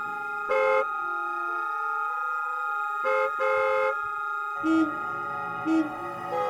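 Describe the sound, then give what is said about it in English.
Car horns honk repeatedly in short, loud blasts, a few overlapping, spaced irregularly over a steady, humming traffic drone, with no one speaking; the horns are aimed at a car still stopped after a traffic light changed, holding up traffic. “I was startled out of my trance. The light had changed and we were holding up traffic.”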